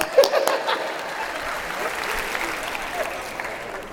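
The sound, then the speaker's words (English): An audience claps steadily for several seconds for people standing because they have great-grandchildren, a dense, sustained patter of many hands at moderate loudness with a brief sharper burst near the start. “He wanted the applause.”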